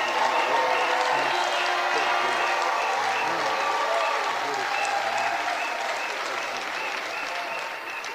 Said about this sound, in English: Oh, I thought you would clap better and prolong your clapping better from such a fantastic ministration and an anointed impartation.